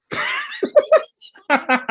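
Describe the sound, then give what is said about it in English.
A voice blows a wet, raspy raspberry imitating a fart, followed by a few short vocal bursts and what sounds like laughter, fairly loud. “Be farting like a,”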